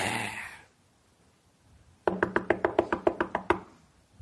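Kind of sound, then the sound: impact, knocking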